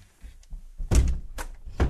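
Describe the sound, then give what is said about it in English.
A door shuts with a solid, heavy thunk, followed by two more sharp knocks about half a second apart, after some soft low bumps. “Close that door again for the last time until about a year from now when you asked me to do that again.”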